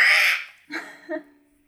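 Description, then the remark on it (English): A person imitates a seagull, voicing the seagull character Nurgle saying yes: a harsh, raspy squawk followed by two shorter nasal cries, loud, with no talking. “But Nurgle is watching Malachi with like a little bit of concern in his seagull face.”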